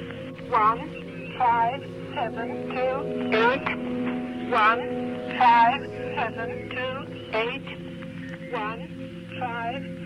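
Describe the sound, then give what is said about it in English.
A shortwave numbers station broadcast that uses electronic music: a steady electronic drone underneath a filtered, radio-like voice calling out short, evenly spaced syllables, one after another at moderate loudness. “This one says, this is a station that uses music from electronic musician ….”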